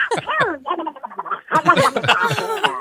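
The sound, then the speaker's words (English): A person does a squawky, raspy Donald Duck voice impression, a rapid burst of garbled, honking syllables that runs loud for a few seconds without pause. “Is that Donald Duck?”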